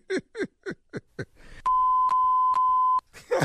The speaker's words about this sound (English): What was that last three beeps right there?